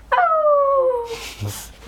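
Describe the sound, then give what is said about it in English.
A child's voice imitates a wolf howl: one high, drawn-out note that slides steadily downward for about a second, then trails off into a soft breathy rustle. “Oh! He howled.”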